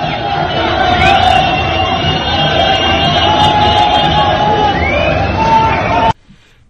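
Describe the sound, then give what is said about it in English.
A street crowd of Iraqis dances and celebrates after a US drone strike that killed Soleimani, in a loud, unbroken roar of voices and cheering, with steady droning horn-like tones running through it, before the sound cuts off abruptly. “That is Iraqis dancing in the street after our drone strike.”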